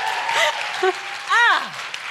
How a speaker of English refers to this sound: Round of applause.